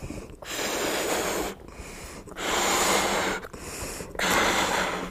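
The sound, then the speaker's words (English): Four or five long, forceful breathy blasts of air, each lasting about a second, broken by short pauses for inhaling, as someone blows up a balloon during a lecture demonstration, stopping before it pops. No one speaks. “So I'm too much of a wimp to actually blow it until it pops.”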